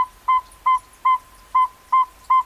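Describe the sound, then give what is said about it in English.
A northern saw-whet owl gives a prelude to its advertising call: a series of six short, even whistled toots at a steady pace, clear, with no other sounds around them. “Some give a prelude to their advertising call.”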